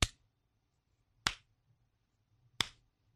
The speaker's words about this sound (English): Golf clap.